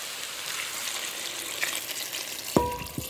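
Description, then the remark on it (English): Steady sizzling of shredded chicken and vegetables frying in a hot pan, then near the end a clink and a burst of louder hissing as stock is poured in for a soup, fairly loud, with no talking. “I'm just going to pour our stock in.”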